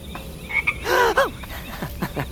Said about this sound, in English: Don't worry, that is just a toad. Ooh, your everyday, very large, definitely not poisonous toad.